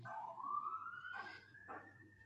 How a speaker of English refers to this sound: sorry, there's a siren. Okay.